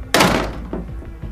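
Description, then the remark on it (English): A door slams shut behind someone stomping out of a room, with one loud, heavy thud that rings out and fades, followed by a few faint rattling knocks as it settles. No voices are heard. “After a few moments of silence, Jezebel finally stomped out of his room, slamming the door behind her.”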